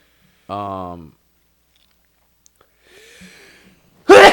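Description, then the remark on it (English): A single sneeze: a voiced, drawn-out gasp, a quieter breathy pause, then a sudden loud explosive burst at the end. “Bless you.”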